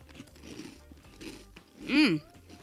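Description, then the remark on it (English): Crunching of someone chewing crisp cereal, with several bursts of crackly munching, followed by a short voiced vocalization near the end. “Y'all hear my cereal?”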